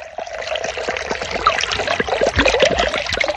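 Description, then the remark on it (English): Doppelbock beer being poured into a glass: a steady, gurgling stream with splashy, bubbly texture and small clicks throughout the few seconds, with no one talking. “Let's pour it up.”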